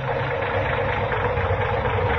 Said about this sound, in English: Say, that engine of yours sounds like real tired iron.